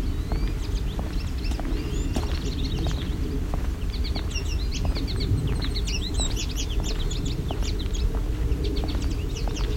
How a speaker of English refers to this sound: Savannah sparrow.